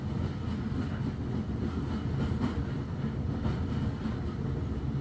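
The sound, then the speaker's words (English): A steady, continuous rumble of a moving steam train, with faint rhythmic knocks of wheels rolling over rail joints running through the low, heavy roar. No voices. “Maybe the rhythms of the train over the tracks.”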